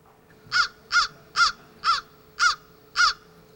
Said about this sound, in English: In the case of the crow, it's everywhere. And you can also hear the sound, so you can hear the call, for example.